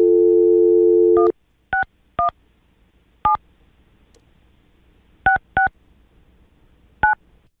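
A steady dial tone hums for about a second, then six short touch-tone beeps follow at uneven intervals as a phone number is punched in to call Jackson, each a clear two-pitched electronic blip over near silence.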